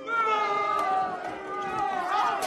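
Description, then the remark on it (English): A crowd of people booing together, a steady, sustained chorus of low droning voices that holds at a fairly even loudness for a couple of seconds with no words. “Where did you find that clip of people booing?”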